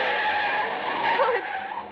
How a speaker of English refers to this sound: The driver swerved way across the center line as though he were trying to run us down. Then he kept right on going.